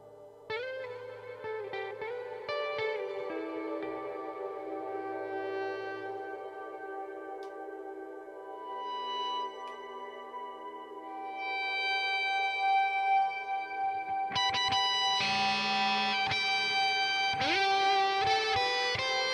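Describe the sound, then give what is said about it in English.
Electric guitar played through an echo patch on a laptop, drenched in echo, sustained notes ringing and layering over each other, swelling steadily and growing louder and denser toward the end, with no voices. “Tell the story of how I came up with this echo patch on my laptop.”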